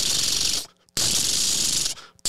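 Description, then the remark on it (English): A voice imitates drive-by gunfire with two long, breathy hissing bursts, steady, separated by a brief pause, with no words spoken. “That's not very loud for a gun.”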